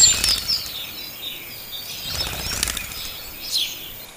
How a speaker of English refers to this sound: The birds cheered. They chirped and they flapped their wings.